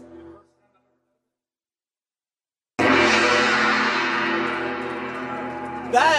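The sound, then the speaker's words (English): After a brief voice and a pause, a gong is struck hard, its loud, shimmering metallic tone ringing and slowly fading for several seconds before a second strike lands. “for all your hard work on social media, we gotta let you hit this gong.”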